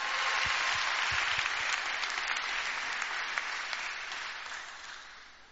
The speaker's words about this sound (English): Come on, God deserves a better clap than that.